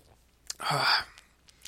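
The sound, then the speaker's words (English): A single slurping sip from a can of Four Loko Black, an alcoholic drink, lasting under half a second, surrounded by faint mouth clicks and small taps in otherwise quiet surroundings. “I gotta take another sip to wash it down here.”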